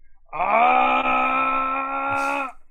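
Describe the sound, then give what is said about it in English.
A man lets out one loud, sustained yell, holding a steady raw tone for about two seconds before cutting off, with no talking around it. “He's yelling and holding it for everyone.”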